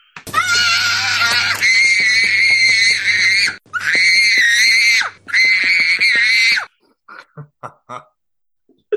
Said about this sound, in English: It's this kid just screaming at the top of his lungs because his dad wouldn't buy him sweets. He's screaming, throwing shit around the supermarket and everything.